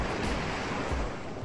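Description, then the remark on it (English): A steady roar of ocean waves, a dense full-bodied wash of surf with low surging swells rolling in about twice, loud with no voices. “I'm drowning with the waves blue. Too much.”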